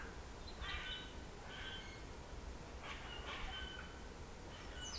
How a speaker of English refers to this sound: I think that's grackle, but it sounds different.